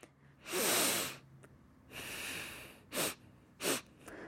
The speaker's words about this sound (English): Yes, so someone is sniffing. That's what we're hearing. So after you would clap this ingredient, you would then sniff it.